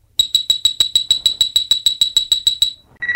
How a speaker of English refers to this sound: This is the story of Star Trek IV, The Voyage Home. You can read along with me in your book. You will know it is time to turn the page when you hear the communicator beep like this.